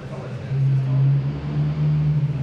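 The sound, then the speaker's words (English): A truck engine runs steadily at idle on chassis dyno rollers, cooling off after a hard acceleration run; a constant low droning hum that swells slightly after a moment and then holds even. “Coming down to an idle section now, which is nice. Let the truck cool off for a moment.”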